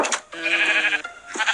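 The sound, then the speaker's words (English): A single drawn-out, wavering sheep bleat, fairly loud, lasting under a second, most likely a person in a sheep costume imitating a sheep, with brief breathy sounds before and after. “I've been tending the sheep all morning, can't you see? Bah, it's okay. Go back in the house, sheepies.”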